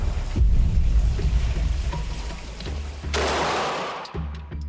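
A heavy shotgun blast bursts out loud and close, its boom spreading into a rough, echoing roar above a steady low rumble of outdoor background noise. No one speaks.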